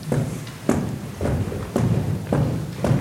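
A group stomps in unison, about six heavy, low thuds landing in a steady, even rhythm roughly every half second, with a dull rumble between beats and no talking.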